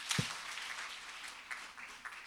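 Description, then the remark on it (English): A crowd claps hands together on cue after a count of one, two, three, in a dense, steady patter of many overlapping claps, beginning with a sharp burst and continuing at an even, moderate level, with no one speaking. “And when I say clap, clap your hands.”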